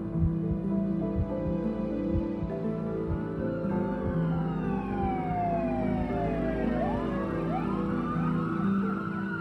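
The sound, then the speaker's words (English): Several emergency vehicle sirens of fire and paramedic vehicles arriving at a car crash wail and sweep up and down, overlapping as they grow louder, over a steady low rumble of engines and traffic. “I watch and wait as the emergency vehicles arrive, as firemen and paramedics check on Noah's parents and the other driver.”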